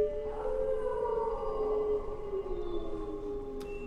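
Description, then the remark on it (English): Long, drawn-out howls from a pack of wolves rise and slowly sag in pitch, several voices overlapping into an eerie chorus, with steady faint background noise and no talking. “You ever seen what a pack of wolves can do to livestock?”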